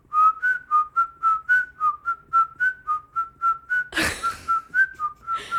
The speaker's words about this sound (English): I feel like maybe if I'm just the right amount of drunk and I'm not so nervous about it, I can whistle a melody. Like I've done it.